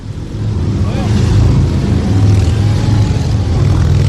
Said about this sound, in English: Wow. All right, so you see all the law enforcement officers on their motorcycles. Here comes the motorcade, it appears. They're heading south down Joseph E. Lowry Boulevard.